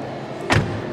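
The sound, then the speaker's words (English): The door of an LS long-wheelbase car shuts with a single solid, deep clunk, fairly loud, followed by a short low rumble that fades into a quiet background. “Did you hear the sound of that car door? The clunk?”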